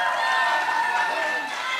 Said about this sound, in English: I don't know why you're cheering. I'm crying, okay?